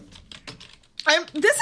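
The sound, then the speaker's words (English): Quick, light clacks of typing on a computer keyboard, about five keystrokes in a loose rhythm, fairly soft, as a question asking how tall the book character Duker, the Imperial Historian, is gets typed; then a voice starts talking as the typing stops. “I am typing, how tall is Duker, the Imperial Historian?”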